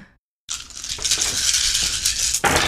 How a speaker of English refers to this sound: Now, he is going to roll his clash to see if he can beat 14 successes on 16 dice. Not likely.